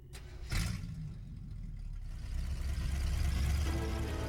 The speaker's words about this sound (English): You know, for a powered-up car, the Batmobile never sounds really souped up. It sounds kind of like a old beater, really. To me, anyway.